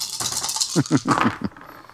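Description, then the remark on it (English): Blue, red and yellow dice rattle in a cup with a rapid clattering, followed by several distinct clacks as they tumble out and settle, ending with a final sharp tap. “One of the blue dice comes up blank, the red comes up blank, one of my yellow comes up blank, and I actually fail this check, to be honest, with one advantage.”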